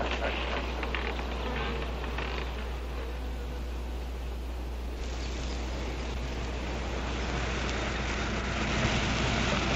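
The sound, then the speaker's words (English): A dense, steady drone of many wasps buzzing, continuous for the whole stretch with no pauses and no voices. “If you knew about wasps what I know, you'd have no fear of them, my boy.”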